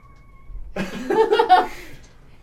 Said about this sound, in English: We have a fine familiar in here. Yeah, the cat has joined us.